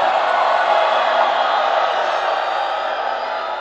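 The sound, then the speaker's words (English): A crowd screams and cheers together in response to a preacher's call to scream, one dense, sustained roar of many high voices, staying loud and steady for several seconds before easing slightly at the end. “If you believe you are the one, give him a scream.”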